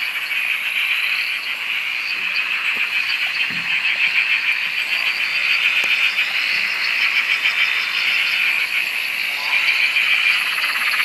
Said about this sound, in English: recorded this on the Dorrigo Plateau in New South Wales, where her sister's dam is home to billions. It sounds like billions anyway. Billions of frogs. What a racket.